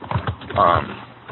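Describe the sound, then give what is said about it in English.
Quick, muffled clicks of typing on a computer keyboard come through a thin, call-quality line, with a short burst of voice partway through. “So somebody's typing.”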